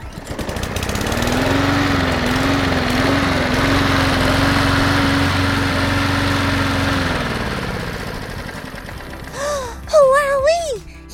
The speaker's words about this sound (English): A lawnmower.